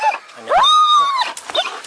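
A police dog, Shep, whimpers, giving one drawn-out, high-pitched whine that rises, holds steady and tails off, framed by brief breathy snuffles and a few faint yips.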